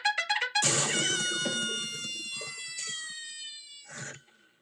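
A cat gives a quick burst of four or five short chirps, then lets out one long, loud, drawn-out meow, with no voices present.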